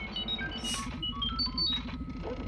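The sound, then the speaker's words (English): A rapid string of electronic beeps and warbling chirps from the astromech droid R2 as it plugs into a computer outlet, hopping between high and mid pitches, with a brief hissing burst, over a steady low rumble. The beeping is fairly quiet. “Plug in, R2 knows everything. Beep, boop.”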